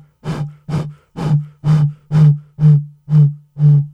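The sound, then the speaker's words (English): Eight short, evenly spaced hoots from someone blowing across a Harmless Harvest bottle, each a low, steady tone wrapped in breathy air noise, with no one speaking. “And as always, I'm going to blow into this harmless harvest bottle in hopes of summoning the sponsorships instead of ringing the bell.”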